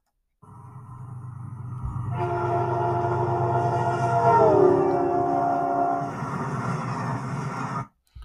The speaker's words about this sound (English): The frequency changes. And so let me give you a sample here. I'm going to show you an example of this is from a train passing by. So listen carefully.